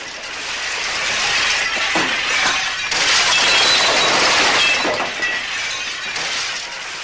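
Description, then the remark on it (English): Continuous, loud crashing of breaking glass outside a glass and mirror factory, a dense wash of shattering and tinkling shards that swells and persists for several seconds with no voices, like large amounts of glass being smashed at once. “Instead of wasting time on another full scene, this time we cut right to the exterior of a glass and mirror factory where mass shattering can be heard.”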